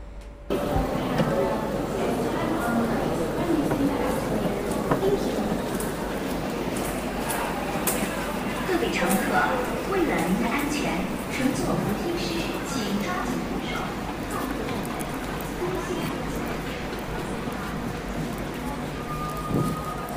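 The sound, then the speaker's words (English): A brief bilingual public-address escalator safety announcement, in English first and then Chinese, plays in a busy metro station, the voice muffled and hard to make out beneath steady loud rumbling ambience and crowd noise. “often when you leave, they'll say, like, be careful when you're using the escalator”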